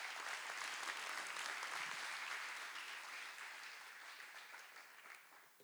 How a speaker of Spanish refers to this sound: ¿Puedes dar un aplauso al Señor, por favor?